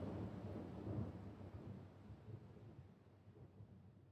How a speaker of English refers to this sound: You continue on, and eventually the sounds of the storm fade into the background.